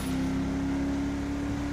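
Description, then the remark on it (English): A car engine and road noise hold a steady, loud drone with a constant low hum throughout, from a car going 70 on Polito Boulevard on the outskirts of a town. There are no voices, and no distinct swell of the car passing by. “This car is going 70 on Polito Boulevard.”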